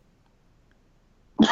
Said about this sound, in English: No, sorry. I was trying to hold that cough in.